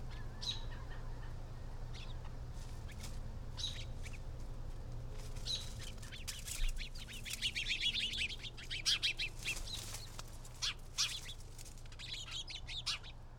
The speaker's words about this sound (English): I love the sounds of the birds. J'aime les sons des oiseaux. The birds, because it's very quiet. Surtout le matin, quand ils sont tout excités. There's birds and there's different kinds of singing.